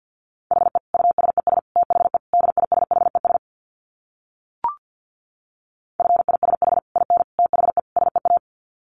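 Rapid Morse code beeps at 50 words per minute at a steady mid pitch, sent in two fast bursts of short dits and dahs separated by a pause with one brief blip, no voices present.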